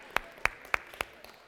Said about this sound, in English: Can we, as we do here, give a round of applause to everyone who served in some capacity? Come on.